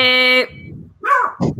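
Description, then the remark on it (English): A loud, steady electronic buzz cuts off, and after a brief quiet pause a dog barks twice in quick succession, fairly loud. “The dog turned out. That's awesome. Oh, they thought when I said beep, they thought the door.”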